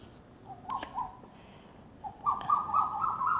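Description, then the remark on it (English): Birds call in two bursts of clear, tonal notes, a short one first and then a longer run, moderately loud over a faint outdoor background with no talking. “I don't understand what they're saying, but I feel I understand some, but I can't explain it, what they're trying to say.”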